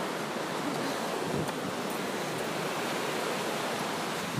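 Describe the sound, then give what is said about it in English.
A steady, rushing hiss of a stream or river flowing under a bridge fills the whole stretch, dense and unchanging, in blazing sunshine, with no voices. “So we're actually podcasting, walking over a bridge, over the stream, river.”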